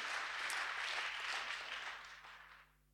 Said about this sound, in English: You can clap for that, by the way. It's okay.